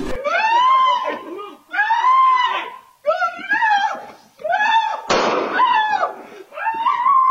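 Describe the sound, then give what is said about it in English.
A single sharp gunshot bangs out partway through, set against continuous loud, high-pitched screaming and frantic shouting that rises and falls in long wailing bursts, as a man walking Lady Gaga's dogs is ambushed, attacked and shot by two men in West Hollywood. “In other news, shocking footage of the moment Lady Gaga's dog walker was attacked and shot has been released.”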